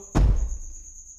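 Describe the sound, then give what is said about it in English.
A cicada inside the room gives a steady, thin high-pitched buzz that runs through the whole moment, briefly interrupted by a single dull, heavy thump near the start. No one speaks. “Our guest, Madam Cicada, has joined us for another installment of the Good Friends Reading Club.”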